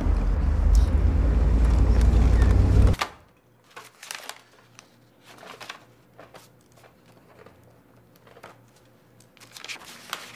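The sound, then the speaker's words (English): A heavy, low rumbling roar cuts off after a few seconds, followed by scattered rustling, crinkling and small clicks as someone rummages through a woman's handbag and shuffles papers, including six months of sales reports. “Can't believe how much stuff she has in her bag.”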